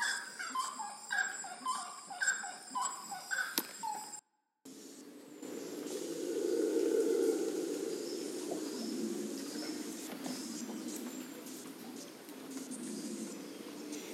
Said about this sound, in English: We're listening to stinky birds on the edge of the lake. And they look kind of like turkey with a blue face.